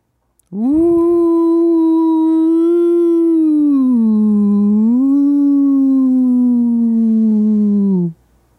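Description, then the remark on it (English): A single long, sustained vocal moan from a person imitating a whale call, gliding slowly down and back up in pitch for about seven seconds, loud, with no talking. “And you might think that this entire whale impression is also doing that.”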